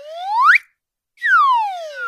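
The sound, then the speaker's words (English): An up-down whistle: a bright, loud tone glides steadily upward in pitch, cuts off for about half a second of silence, then glides back down just as smoothly. “I wasn't positive what it was called, but apparently it's called the up-down whistle.”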